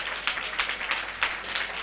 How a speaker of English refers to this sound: Clap your hands.